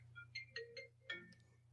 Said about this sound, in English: Really? How many times do we have to ask the class to turn their phones off? That wasn't my phone. It wasn't mine.